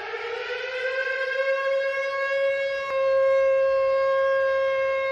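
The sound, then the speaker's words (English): A long, steady alarm siren holds one high, harmonically rich tone for about five seconds, loud and unbroken, with no voices over it, sounding as a spun game wheel lands on a game called Parental Advisory. “Sound the alarm. That's a long alarm.”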